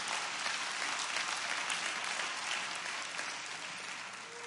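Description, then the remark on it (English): A church audience applauds together after a message, giving the Lord a hand clap, a dense, steady wash of hand clapping from many people that holds for several seconds and tapers slightly toward the end. “Let's give the Lord a hand clap just for that message.”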